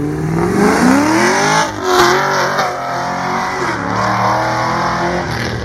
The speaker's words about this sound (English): So here's pass number 1 on the Camaro. And here's a second time in case you want to crank it up and really hear it roar through those speakers.